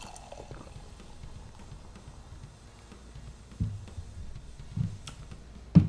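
A can of Hazy IPA beer is handled, opened and poured, with a soft, steady fizzing gurgle of liquid throughout and a few sharp metallic clicks and knocks near the end, fairly quiet, with no talking.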